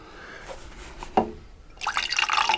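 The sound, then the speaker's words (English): A few light clinks and drips, then a drink without ice is poured into a cup with a large handle in a steady, splashy stream that fills the last second. No one speaks. “Just pour me a drink. Put the straw in it.”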